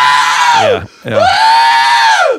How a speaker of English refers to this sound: By the way, that guy screaming, he was wise to do that in the sense that he knew it sold it's going to add an extra zero to my check.